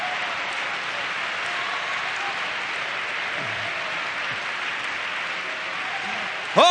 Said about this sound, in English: Oh, clap your hands and give God some praise.